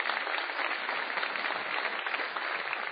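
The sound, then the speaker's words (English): A debate audience applauds steadily for several seconds as the evening is handed to the panelists and moderator John Donvan, a dense wash of clapping hands that stays loud and even throughout with no voices rising above it. “And I'd just like to invite one more round of applause for Robert Rosenkrantz for making this happen.”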